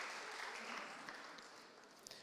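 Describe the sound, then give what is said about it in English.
A crowd applauds people left standing in a steady, dense wash of clapping that tapers off gradually over a couple of seconds, fairly soft. “Give them a round of applause for still standing.”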